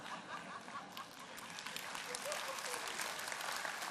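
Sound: audience clapping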